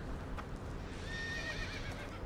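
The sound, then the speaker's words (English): A horse whinnies with a shrill, quavering neigh lasting about a second, set against a steady background of rustling, hoof-like noise. No one speaks. “Is that a horse? Probably.”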